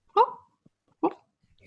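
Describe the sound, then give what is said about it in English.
Two short, abrupt hiccup-like yelps from a sleeping female dog, about a second apart, moderately loud against a quiet background. “was doing like her weird hiccup thing when she sleeps.”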